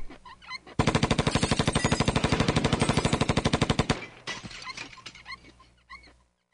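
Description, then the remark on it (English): A long, loud burst of rapid automatic gunfire from a drive-by shooting, dozens of evenly spaced shots for about three seconds, then it cuts off, leaving faint scattered noises and what may be a dog. “It says, if you don't pay up, there will be a drive-by shooting.”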